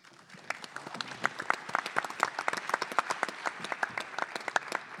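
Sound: audience clapping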